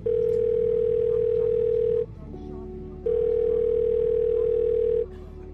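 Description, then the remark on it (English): A telephone line tone from an attempt to place a long-distance call from Samoa sounds in two long, steady, loud beeps of about two seconds each, separated by a short pause, over a low background hum. “2 decades ago, as a medical anthropology field worker in Samoa, I had spent weeks trying to get a long-distance phone connection to check in with my parents after weeks of trying.”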